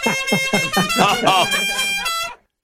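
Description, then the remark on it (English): A car horn honks in a rapid string of short bleats that merge into one long, nasal, wavering blast lasting about two seconds. The tone is reedy, loud and held steady before cutting off. “Your Horn Sucks”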